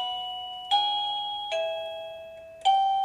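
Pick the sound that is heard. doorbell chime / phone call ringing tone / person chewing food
doorbell chime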